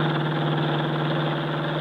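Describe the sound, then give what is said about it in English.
A car going by, heard as a steady, low engine hum with a mid-pitched drone that holds at an even loudness throughout, with no voices. “When the car had passed, he released me.”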